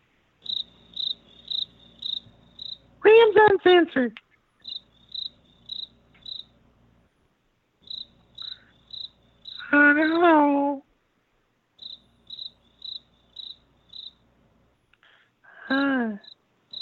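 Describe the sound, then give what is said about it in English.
A phone ringing tone of short, high-pitched beeps in quick repeating clusters, with pauses between groups, as an outgoing call is placed; a voice speaks briefly in three spots between the rings. “All right, it's ringing. We're calling Russ.”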